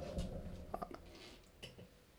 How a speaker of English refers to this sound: Such thunderous sounds you make. My bad. I was grabbing my water.